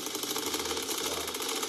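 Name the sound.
gunshots sound effect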